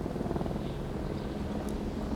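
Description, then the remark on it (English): A helicopter cruises toward people stranded on a mountain, its rotor thrumming steadily, a continuous low, rapid chopping pulse with no voices and no letup. “But finally, sometime that afternoon, a distinctive sound filters through the haze, bringing him back to reality. A chopper is cruising towards them.”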